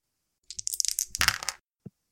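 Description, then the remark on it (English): Percentile dice are rolled on a treasure chart during a tabletop game, landing on 77, rattling and clattering in a rapid burst of bright clicks for about a second, then one last short tap follows after a brief pause. No one speaks. “Can you roll a percentile dice?”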